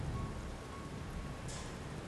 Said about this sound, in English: In the middle of the night, with a thick rain all around me, there was a single item left in front of the door of the Wong Center.